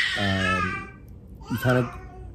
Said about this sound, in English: But he's over in his playpen, supposed to be sleeping, but practicing his yelling and screaming.